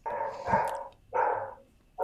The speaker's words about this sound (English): No, it's one of the Lisbon barking dogs. Oh, hello, yes. Lisbon barking dog. Is it barking in Portuguese? I guess so. I think he's been put out